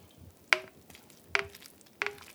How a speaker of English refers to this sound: Okay, so you're cutting the cake.